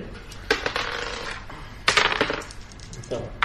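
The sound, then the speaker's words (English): A heavy metallic crunch and grinding as a truck drives over one car, crushing it entirely, and then over another, crushing it slightly, in two harsh, rattling bursts separated by a lower scraping rumble. “You're pretty confident that was the sound of a truck going over one car, crushing it entirely, and over another, crushing it slightly.”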